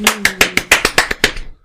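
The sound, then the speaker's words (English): Around nine sharp hand claps in a quick, steady rhythm, fairly loud, with a faint low tone beneath the first few before the clapping trails off. “Slow clap start.”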